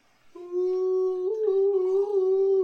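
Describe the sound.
A person imitates a wolf howl with a single long, steady voiced note that rises slightly partway through, fairly loud, lasting over two seconds with no talking.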